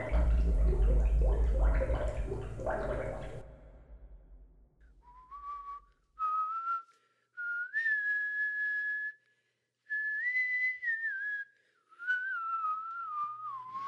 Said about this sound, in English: please stop. Stop what? The whistling. Oh, sorry.